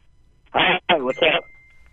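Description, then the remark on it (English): A muffled, tinny voice comes through a phone line in three short bursts of speech, thin and band-limited, with a faint low hum underneath. “It's hard to hear you, but I get sounds like it's ….”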